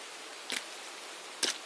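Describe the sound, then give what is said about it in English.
Rain falls steadily as a soft, even hiss, with two brief, sharper bursts standing out about a second apart. No voices. “I stood frozen in the rain, staring at her window.”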